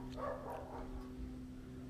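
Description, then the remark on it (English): Dogs bark, a quick cluster of muffled barks in the first second, then quiet apart from a steady low electrical hum. “And now these dogs are barking.”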